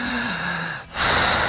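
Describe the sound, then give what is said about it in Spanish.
A stage hypnotist demonstrates strong, slow, deep breathing: a loud breath drawn in slowly and deeply, a brief pause, then a strong airy exhale, with no one speaking. “Y entonces salgo yo al escenario y les pido: quienes quieran ser hipnotizados, escuchen su respiración. Aprendan a respirar. Hagan esto.”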